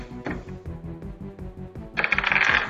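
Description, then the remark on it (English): Dice rolled to hit in a game, rolling on a hard tabletop: a run of light, rhythmic clicks and taps, then a brighter, louder clattering rattle toward the end. No one speaks. “So go ahead and roll to hit.”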